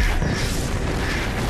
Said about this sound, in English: That's a rather bad CG explosion. Mm-hmm. Yeah, it might have been better to show it from orbit and just vaporizing half the continent.